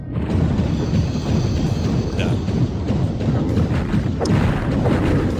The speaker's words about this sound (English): Okay, check this out. Wait, not quite. Coming up here, you hear like a shooting sound.